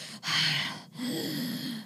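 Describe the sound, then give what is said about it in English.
A voice imitates heavy, raspy respirator breathing: one harsh hissing inhale followed by a longer, lower wheezing exhale, with no other talking. “and unfortunately, that crack in her helmet is kind of getting a little bit bigger, and she's actually starting to have a little bit of trouble breathing.”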